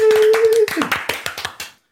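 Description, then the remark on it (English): Quick, steady hand clapping, roughly a dozen sharp, even claps in a brisk rhythm. A sustained vocal tone sounds over the first few claps, and the clapping stops abruptly, leaving silence. “The sound of clapping, probably clipping the...”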